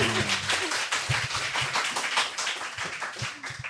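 A crowd claps steadily for a few seconds, a dense, even patter of many hands with no voices over it, holding a fairly constant loudness throughout.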